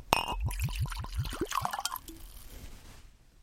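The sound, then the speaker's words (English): Scotch glugs out of a bottle into a glass in a quick run of about eight hollow gurgles, then a short trickle that fades away; about an ounce is poured for each person. Fairly quiet, with no talking. “So I'm pouring out about an ounce for each of us.”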